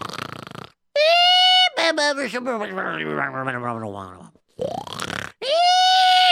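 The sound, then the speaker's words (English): A man, a soldier sleeping in the barracks after the night shift, snoring loudly in exaggerated, cartoonish style: a rough, rattling snort followed by high, whistling exhales, repeating in about three long breaths with short pauses between. “There is …, snoring away.”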